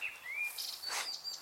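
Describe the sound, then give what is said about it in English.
A blackcap's rich, fluting song, including a bit of blackbird imitation: a few clear whistled phrases and short warbles in quick succession, fairly quiet, with no voices present. “Giving a bit of blackbird imitation there. They are incredible songsters.”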